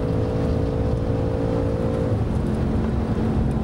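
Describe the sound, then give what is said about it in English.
A race car engine roars loudly and steadily at about 145 miles an hour, heard from onboard, with a brief shift in pitch partway through like a gear change. No one speaks. “In this car, it's fast, 145 miles an hour.”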